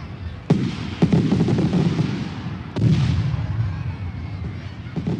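Fireworks burst with a few sharp, booming explosions, each trailing into a long, rolling rumble and crackle, with one more pop near the end.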